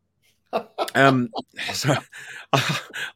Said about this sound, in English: Sorry, I'm going to cough.